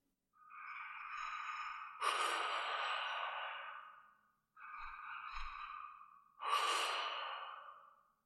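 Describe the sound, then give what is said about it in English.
Heavy, monstrous breathing with an echoing quality from a figure sitting on a stool at a bar: two slow, loud cycles of a long rasping inhale followed by a harsh, drawn-out exhale, with no voices. “I hear a strange breathing. Heavy, echoing, monstrous.”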